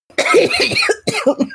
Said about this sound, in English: After breathing in for like a minute, I'm like coughing very violently.